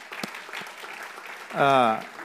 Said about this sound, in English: Can we give the Lord a little hand clap for that? Amen.